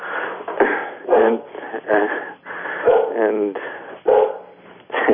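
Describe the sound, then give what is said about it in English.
A dog barks and yips excitedly in quick, repeated bursts, loud, with whiny, whimpering tones between the barks for several seconds, welcoming a woman coming home. “I hear your puppy in the back. My wife is now just coming home, and so she's getting welcomed by our dog.”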